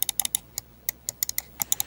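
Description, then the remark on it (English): Rapid, crisp clicks of the buttons of a fast, relatively light computer mouse with zero-gap switches, about fifteen sharp taps in under two seconds, some in quick bursts with brief pauses, clear with no talking. “Okay, so it's very clicky. I don't know if that's coming through or not.”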